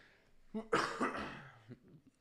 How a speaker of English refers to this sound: I apologize. I'm coughing and burping and everything.